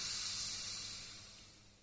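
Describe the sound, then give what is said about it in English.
A champagne bottle eased open the polite, etiquette-correct way, with a soft, steady hiss of escaping gas, no pop, fading gradually over a couple of seconds. “In case you missed it, in polite society, this is what a champagne bottle being opened sounds like.”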